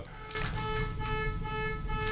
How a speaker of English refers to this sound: Sorry, I was taking my keys out of my pocket and hit the... panic button.